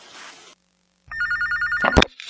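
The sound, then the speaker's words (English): A phone rings loudly with a bright, rapidly trilling electronic tone for under a second, then gives way to a few sharp rustling bursts. “Phone somehow drops the call.”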